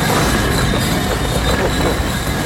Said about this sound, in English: Loud tube train.